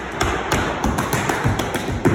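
Tap shoes strike a hard floor in a quick, uneven rhythm, with sharp bright clicks and a few heavier heel thuds, fairly loud and with no voices.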